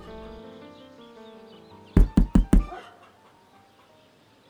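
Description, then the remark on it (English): Four firm, evenly spaced, loud knocks on a wooden door, rapping out over a soft musical background that keeps playing underneath. “You there! Get the bloody door!”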